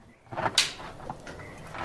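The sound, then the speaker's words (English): A man opens a door into a large ice-bound interior with a short scraping rush of noise and a sharp burst, followed by quieter shuffling and faint knocks as he enters. “A man opens a door and enters a large ice-bound interior, then switches a light on.”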